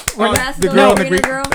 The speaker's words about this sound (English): A round of applause for, what was her name?